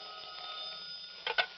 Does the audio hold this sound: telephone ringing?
yes